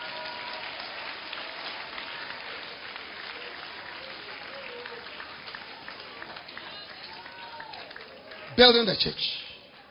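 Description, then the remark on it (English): A crowd claps hands for Jesus steadily in a dense, continuous patter, with voices murmuring underneath, then a sharp louder burst of noise near the end. “Clap your hands for Jesus, somebody.”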